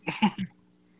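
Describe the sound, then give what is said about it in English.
A man with a chest cold clears his throat in three quick, gravelly bursts within half a second, fairly loud and low-pitched, then a faint hum lingers in the quiet that follows. “So you're hearing me clear my throat a lot.”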